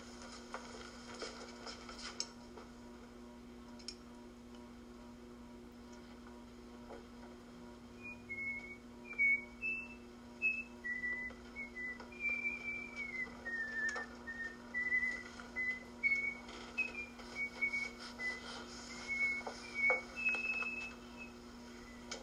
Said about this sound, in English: You're whistling. Pardon? You were whistling.